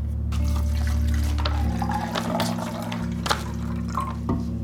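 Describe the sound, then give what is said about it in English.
Water splashes and trickles steadily into a small Sea-Monkeys tank as it is filled, with a low steady hum underneath and a few clinks and taps along the way; no one speaks. “Okay, so we need to put water in here.”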